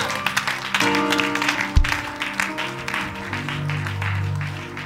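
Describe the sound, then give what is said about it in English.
A crowd claps hands steadily and densely throughout, a loud continuous patter, with sustained keyboard-like musical tones running underneath and a brief low thump partway through. “Clap your hands.”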